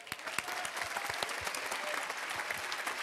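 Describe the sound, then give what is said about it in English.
A church audience gives steady applause for church members going to Sitka and Ketchikan in Alaska this summer. A dense wash of many hands clapping at an even level, with scattered sharper claps standing out, and no one speaking over it. “And I think they stand, they deserve an applause.”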